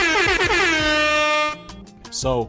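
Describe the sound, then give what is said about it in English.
A loud, blaring air horn sound effect fires off a quick string of rapid blasts, then holds one long sustained honk before cutting out, followed by a few brief trailing noises. “Sound man, go ahead and put them air horns in here just for Black women.”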